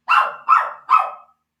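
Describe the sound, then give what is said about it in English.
A dog barks three times in quick succession, each bark loud and sharp with a short trailing tail, no voices alongside. “Yeah, so the dog scared the crap out of me, because just as that's happening, this little spider starts to dive in front of me.”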